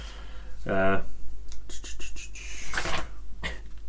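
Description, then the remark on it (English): Paper notes rustle and crinkle in a series of short, scratchy bursts, with a brief voiced murmur near the start and a low steady hum underneath. “Here comes the rustling of paper.”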